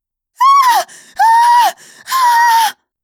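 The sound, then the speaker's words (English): A woman screams in terror three times, each shrill, sustained cry loud, separated by sharp, ragged gasps for breath. “Sort of pretty, except for the fact that her eyes were wide with terror and she was screaming.”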